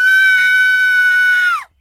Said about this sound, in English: But it's the same scream, it's from Reality Bites. Yeah. Like the really, murder house. The really girly scream, yeah. Yeah, so this is the where we learn about Flanders' scream.